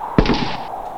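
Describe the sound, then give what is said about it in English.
A single sharp gunshot, the one bullet fired at a clown getting back in his clown car, cracks out loudly, its bright burst fading into a short, noisy tail over about half a second. “Well, when in doubt, shoot the clown, man.”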